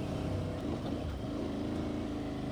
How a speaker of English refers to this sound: Stock. This is stock exhaust? Stock. And it's not the exhaust you're hearing. It's the induction. Oh, man. Ah! I should not be here on this motorcycle with these tires.